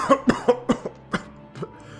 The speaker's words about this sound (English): Gideon slumped against the bookcase in a fit of coughing.